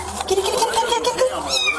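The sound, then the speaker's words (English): A kitten trapped in a storm drain mews in a few thin, high-pitched cries in quick succession, sounding slightly hollow and enclosed, over a steady low background rumble. “A kitten is trapped in a storm drain.”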